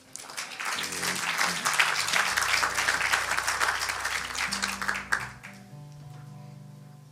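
An audience applauds with dense, steady clapping for about five seconds over sustained low keyboard chords; the clapping stops abruptly while the held chords continue softly.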